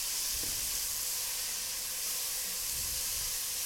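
Steady, loud sizzling fills the whole stretch, a dense hissing crackle of leeks frying in a hot pan, some of them rinsed and still a little wet. Faint low thumps sound beneath, and there is no talking.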